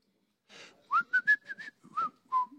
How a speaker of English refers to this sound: Have you heard this boy whistle? That guy's got a spiritual gift of whistling. And we say that he's whistling in tongues. That's what we say he's doing.